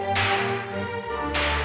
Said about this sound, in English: Good, I'll give you penitence. Take that, and that, and that." He punctuated his words with lashes of the whip.